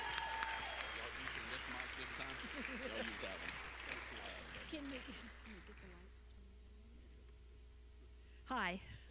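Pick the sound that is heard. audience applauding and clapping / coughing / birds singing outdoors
audience applauding and clapping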